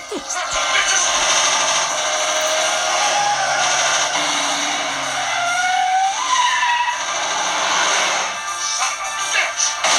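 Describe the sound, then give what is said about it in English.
A car shot with a shotgun skids and flips over, with screeching tires and a roaring engine, a continuous harsh squeal lasting several seconds with rising and falling pitch. “And then he shoots his car with a shotgun that flips for no reason.”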